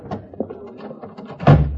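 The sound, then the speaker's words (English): A door swings shut with a solid, heavy thud near the end, after a moment of faint shuffling and movement. The closing is loud, its low boom lingering briefly. “All right, close the door, O'Connor.”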